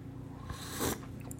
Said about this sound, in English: Excuse me while I take a sip of tea.